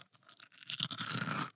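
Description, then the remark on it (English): A crisp crunch as a coconut crispy cookie roll is bitten into, a quick run of sharp crackling snaps that builds and then fades, with no talking. “this is a little coconut crispy roll”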